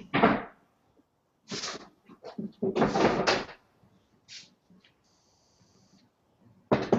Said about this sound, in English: I'm just going to change my chairs here because I'm going to be incapable of standing up here shortly.